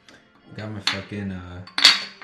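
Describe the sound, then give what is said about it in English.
Glasses clink in a toast to Corona: a couple of bright glassy clinks ring out, one midway and a sharper one near the end, over a voice drawing out a sustained, sung-out cheer. “Everybody clink your glasses to Corona.”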